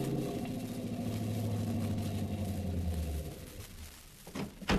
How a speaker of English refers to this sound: In response to the Code 2 broadcast, the radio car proceeds immediately to the 3900 block on Norton Avenue and pulls over to the curb on the west side of the street.